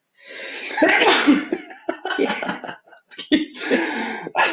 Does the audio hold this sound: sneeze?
yes